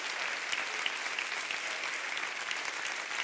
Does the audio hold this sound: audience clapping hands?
yes